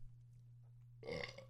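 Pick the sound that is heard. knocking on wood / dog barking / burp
burp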